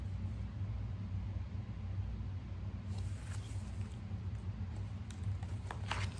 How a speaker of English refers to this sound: Suddenly it began to rain very hard. Thunder rumbled until it got so loud that it woke them up.